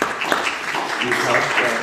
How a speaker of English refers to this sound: We are now in our 72nd year of ministry, and you can give yourselves a round of applause.